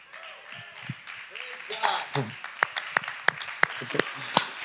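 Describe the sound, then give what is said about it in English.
A polite golf clap: about half a dozen crisp, evenly spaced hand claps at a slow, steady pace, preceded by indistinct voices and murmuring. “Play a little golf clap.”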